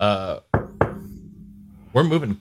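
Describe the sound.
Two sharp knuckle knocks on a hollow fake-wood desk, distinct, spaced about a quarter second apart and ringing briefly, with a voice talking just before and after.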